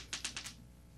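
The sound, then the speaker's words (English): Dice clatter in a quick run of four or so sharp clicks that bounce and settle within half a second, with no one talking. “Let's do the dice.”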